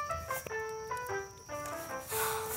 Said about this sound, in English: It's got this self-auto-play function. Oh, I don't want to listen to stupid Casio keyboard sounds. Nah, just take a listen to this one.